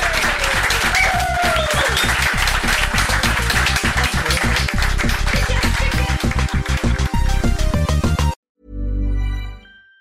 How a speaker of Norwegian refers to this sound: Men gi noe litt applaus da, vi ferdige!